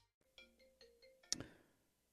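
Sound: cell phone ringtone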